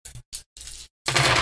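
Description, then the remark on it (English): A few quick bursts of clattering give way to a loud, sustained rattle of many dice tumbling together, rolled for an observation roll with two extra dice added, bright and crackly with no voices. “Yeah, when you roll a lot of these, it's hard.”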